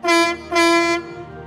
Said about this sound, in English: This is a story about Thomas's friend Sydney, a dark blue diesel electric shunting engine. Sydney is a very kind, easygoing engine, but he can be a bit forgetful. Sydney has a horn that sounds like this.